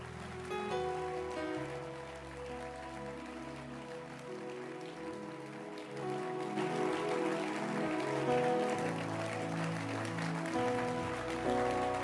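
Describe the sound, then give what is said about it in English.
A church audience claps hands at an evening church service in a dense, continuous patter that swells after the midpoint, mixed with sustained musical chords throughout; no one speaks. “It's good to clap your hands.”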